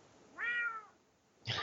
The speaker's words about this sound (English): Go away, Scratch. I'm just gonna say she has a cat in our office.